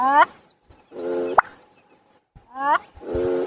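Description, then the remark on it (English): A male bird's mating call: a wheezy, rising whistle with harmonic overtones, then a sharp pop like a cork, the sequence starting again soon after. No one speaks. “It kind of sounds like a wheezy whistle and then like a champagne bottle being uncorked.”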